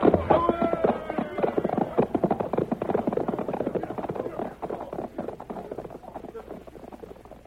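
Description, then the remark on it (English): Horse hooves gallop in a fast, steady drumming rhythm that runs throughout, loud, with a busy rumbling clatter underneath, as horses pull a stagecoach down a creek road. “They're driving the stage down the creek road.”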